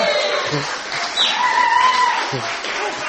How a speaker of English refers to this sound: and you can give him a cheer and clap if you like.